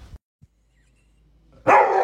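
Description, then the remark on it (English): A senior dog guarding hot Cheetos lets out a single loud bark after a near-silent pause, preceded by a short muffled yip at the start. No one speaks. “Like, if your dog is guarding it, that's a behavior you need to address.”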